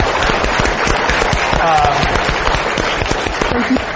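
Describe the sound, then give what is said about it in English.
An audience applauds steadily for about four seconds for a 12-year-old sixth-grade guest on stage, a dense wash of many overlapping claps at an even, loud level, with faint cheering voices mixed in. “So please give him a round of applause for doing this.”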